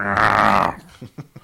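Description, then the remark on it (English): A person imitates a dog barking: a loud, gravelly, drawn-out growl-bark followed by two or three short, quieter barking yips. “Bark, bark.”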